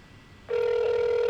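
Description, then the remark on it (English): A call-waiting beep on a phone line: after a moment of faint line hiss, a single loud, steady mid-pitched tone switches on and holds to the end, with no voices. “Oh, what is that when it beeps like that? Like somebody's beeping in.”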